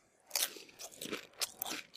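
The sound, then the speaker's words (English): A voice imitates loud, wet crunching of cereal being chewed, a run of irregular crackly bursts lasting a couple of seconds with no talking. “there's somebody just eating cereal. And he's just like, and he is crunching.”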